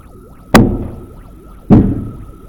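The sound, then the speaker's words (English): Two heavy, booming knocks strike a door about a second apart, loud, each ringing out briefly over a faint, steady warbling tone in the background. “Something's at the door.”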